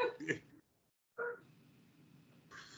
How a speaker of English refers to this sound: Oh, God, hold on 1 second. My dog's going crazy.